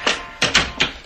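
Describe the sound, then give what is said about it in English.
A door being unlocked with keys and worked open: four sharp clacks of a latch or lock, irregularly spaced within about a second, each ringing briefly. No one speaks. “Open the door.”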